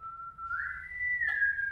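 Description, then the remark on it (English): A single sustained human whistle, holding a steady note before gliding up to a higher pitch and continuing, fairly clear over a faint low background rumble, with no talking. “Okay, so are you calling your whistle?”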